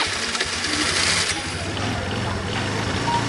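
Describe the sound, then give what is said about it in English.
A small motor engine buzzes steadily, a continuous rattling drone like a scooter idling and revving slightly, with no speech over it. “Oh, those kind of scooters, not e-scooters.”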